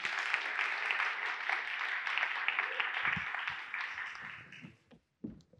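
A crowd at Bourneville applauds a guest speaker invited up to talk on a psalm, a steady, dense wash of clapping for about five seconds, then it fades out, leaving a few scattered claps and a brief voice at the end.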